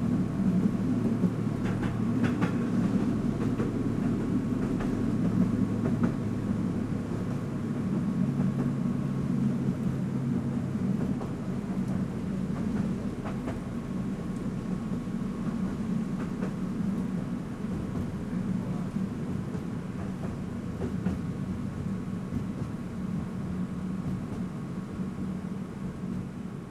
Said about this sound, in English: So that was Tram 12 from the film recordist Sound Weekends. You can find a collection of his film recordings from Kyiv on his Bandcamp page.